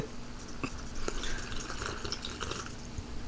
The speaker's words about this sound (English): I'm just gonna have a sip out of my fucking Duck Dynasty cup. Hold on.